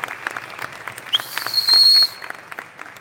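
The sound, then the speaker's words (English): An audience at a school graduation ceremony breaks into steady applause, many hands clapping together in a dense patter, with a shrill whistle rising briefly over the clapping midway through. “And for that, parents, students as well, I think we owe them a big round of applause for all their hard work through the year.”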